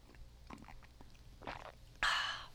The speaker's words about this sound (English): hold on, sip, sip.